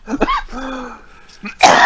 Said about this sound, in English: Damn it. You making me cough.